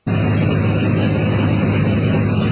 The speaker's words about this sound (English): Oh, there's the sound of a plane. I have it muted. There's the sound of a plane.